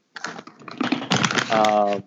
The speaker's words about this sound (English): what are you eating? Yes, it's very crunchy and very loud.